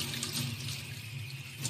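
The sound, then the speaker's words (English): Steady rush of water pouring from a faucet into a sink basin, a continuous hiss with a low splashing rumble underneath, no voices. “this is how you take a shower, Miss Nick. You could actually take one in your sink if you want.”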